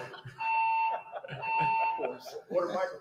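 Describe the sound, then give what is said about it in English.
A building fire alarm goes off during an introductory press conference, blaring in long, steady electronic tones, sounding twice in a row, loud and echoing while people keep talking beneath it. “So the fire alarm goes off while they're doing their introductory press conference”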